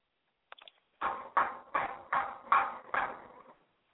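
A few light taps, then six steady, evenly spaced knocks on a wooden door, fairly loud, with no voices.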